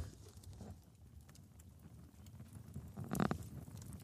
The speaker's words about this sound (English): I'm in the bus by myself, and I got the fire roaring. Let me see if I can get the microphone close enough to this. You guys can hear it too.